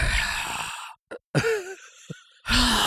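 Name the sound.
imitated heavy mouth breathing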